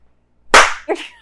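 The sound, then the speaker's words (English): A hand slaps a man's forehead once, a sharp, loud smack with a brief sting, followed almost immediately by a softer, duller second sound as it fades. “As he slaps him in the forehead and says,”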